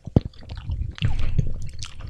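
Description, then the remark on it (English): Thick classic hot sauce squelches and splats out of a bottle as it is poured, with a few wet squishy bursts and soft gurgles over about two seconds. “Oh, we're pouring all over the rest of our classic hot sauce.”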